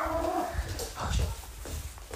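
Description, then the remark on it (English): A dog barks several times in quick, uneven bursts, muffled, with a whiny, tonal edge to the first calls and no talking over it, reacting to a pizza delivery. “Dog's barking, going crazy.”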